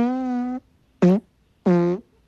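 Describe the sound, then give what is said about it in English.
A long, buzzy fart followed by two more blasts, one short and one medium, the sequence loud with brief silent gaps and no talking. “It's not like a one and done. This has tail on it.”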